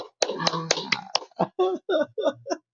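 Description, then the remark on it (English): A quick burst of about five sharp, crisp hand claps in an uneven rhythm, made by one person clapping for themself, with a voice running underneath, followed by a person speaking on their own. “I don't know what the fuck happened to it, so I'm clapping myself, okay?”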